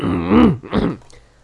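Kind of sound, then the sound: human body sound, burp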